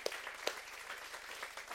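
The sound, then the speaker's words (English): A church audience applauds the people who assist at the church, with a steady, dense patter of many hands clapping, and two sharper individual claps stand out near the start. No one speaks over it. “Yeah, I would just clap for that.”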